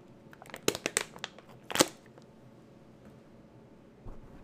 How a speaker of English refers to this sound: As I take a huge swig of water, I apologize.